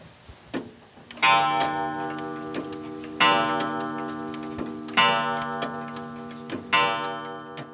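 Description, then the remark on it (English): Over 100 old clocks tick steadily in a small home on a farm in Fairview, West Virginia, while resonant chime strikes ring out about every two seconds, each tone lingering and overlapping the next. No one speaks. “His tidy little home, which sits on his grandparents' old farm in Fairview, West Virginia, is packed with clocks.”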